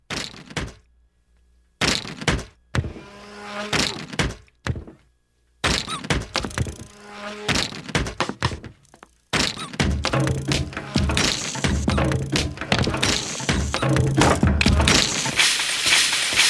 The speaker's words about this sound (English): Grocery carts. The Saturn Ion with dent-resistant side panels.